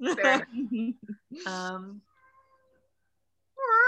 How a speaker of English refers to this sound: Oh, I do hear that sad cat. Yeah. Is that Kiaro? I can't even tell. I think it is.